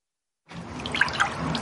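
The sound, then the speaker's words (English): After a brief silence, an object is hydro dipped into paint-covered water for a water transfer print by an artist in Southern California: a steady watery sloshing with a couple of small bright drips and plops, no voices. “Hydro dipping is a water transfer print, so basically painting in water.”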